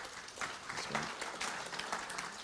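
A crowd applauds steadily, dense overlapping claps forming a continuous rustling wash at moderate volume for a few seconds, with no voices standing out.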